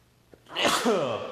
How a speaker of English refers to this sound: Oh my God, I'm going to sneeze. Just looking at it.